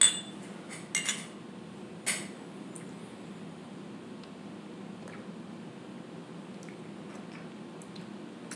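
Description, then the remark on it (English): A few quick, bright clinks of glasses touching in a toast before tasting a drink, clustered in the first couple of seconds, followed by a low, steady background hum with no talking. “Let's try the Socratic questioning, guys. Cheers. Cheers.”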